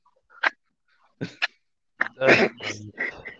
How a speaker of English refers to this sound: I hear your dogs. Yes. I said, is that your dog? That would be all three of them, probably. There are three dogs in my house.